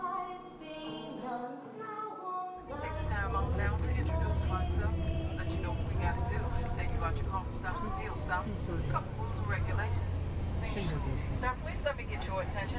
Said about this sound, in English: So I'm on the bus that's going to take me back home